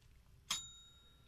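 A single bright bell strike rings out, its clear metallic tone lingering and slowly fading over a quiet background.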